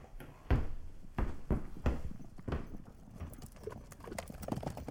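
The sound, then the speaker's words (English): Horse hooves clip-clop in a steady, uneven rhythm, with several sharp hoof strikes standing out early on, moderately loud, with no talking. “I will call for a horse.”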